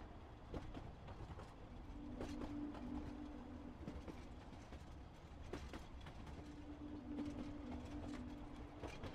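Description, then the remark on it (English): A train rumbles steadily along the tracks through a desert, with a dense low-end roar, periodic clacks of wheels over rail joints, and two stretches of a faint sustained metallic tone, with no voices. “The train rolled on and on, and even though they'd slept through most of the night, the hypnotic sounds of the train lulled them, and they all grew heavy-headed and nodded off.”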